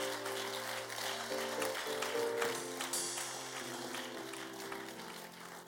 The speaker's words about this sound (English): I thought you are clapping for Jesus.